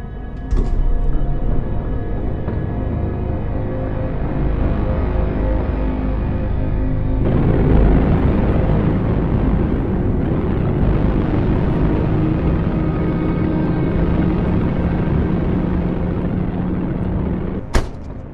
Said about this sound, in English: So after this, the elevator closes, and it shows the scorpion jacket, and then it's a jump cut to him in the car, and the soundtrack for just a few seconds is just this big wall of drone. Yeah. As like the insanity and madness has taken hold.